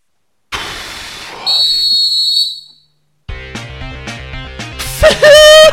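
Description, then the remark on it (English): A brief hissing rush gives way to a shrill, steady high-pitched whistle lasting over a second. After a pause, loud music starts, with a rising whistle-like tone near the end. “Whistle, song, whistle, whistle, song, whistle.”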